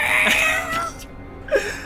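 A cat meows in a drawn-out, wavering cry for most of the first second, then gives a shorter, sharper mew toward the end, fairly close and clear with no talking.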